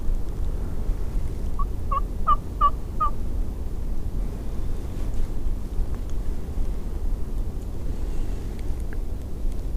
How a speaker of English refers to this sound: There he is. Another hen.